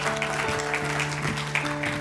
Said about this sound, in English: Yeah, you can clap for that.